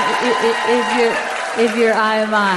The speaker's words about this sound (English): Oh, you can give the Lord a better clap offering than that.